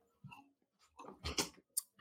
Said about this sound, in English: So while he edits this, I will take a sip of my tea.